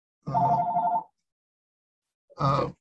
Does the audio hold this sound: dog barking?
no